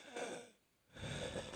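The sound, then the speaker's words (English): Two slow, strained breaths from a person, one in and one out, with a raspy, whistling wheeze and a brief quiet gap between them, fairly loud. “And like when I breathe, like this is me breathing.”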